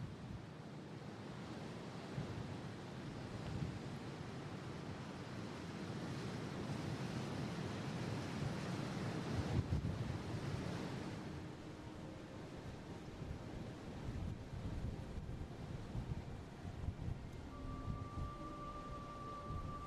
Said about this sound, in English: Anyway, here's a track in the middle of the Saddle with the ocean either side and very strong winds blowing between this narrow gap.